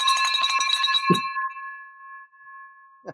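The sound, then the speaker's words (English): A bright bell is struck rapidly many times for about a second to celebrate a deal, with a dull thump near the end, then its clear metallic tones ring on and slowly fade. “Finally get the bell.”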